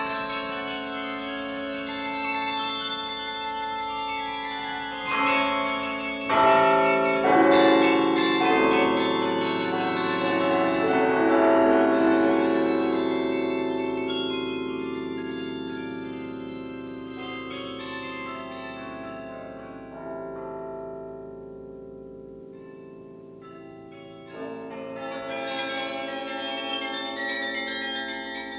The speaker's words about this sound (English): The Chimes of Dordrecht. These are the most joyous bells in Europe. They can be solemn and gay. They can laugh, console, and amuse.